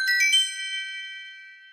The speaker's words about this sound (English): We'll have a lot of chimes in between. We'll stop, we'll eat, and then we'll discuss.